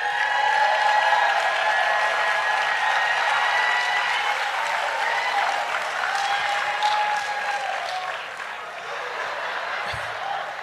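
An audience under a tent claps steadily for about ten seconds, a dense, even wash of many hands that eases slightly near the end, with faint voices mixed into the crowd noise.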